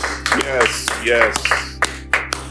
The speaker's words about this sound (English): You know, that takes commitment to be in every single Mind Shift Monday morning at 8 a.m. Isn't that just awesome? Give yourself a big round of applause, please. Would you?